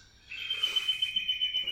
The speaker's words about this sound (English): Fucking birds.